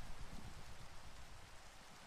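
Steady rain falls without a break, a soft, even hiss of countless drops spread across the whole range, with a slightly heavier low patter underneath. No voices or other sounds.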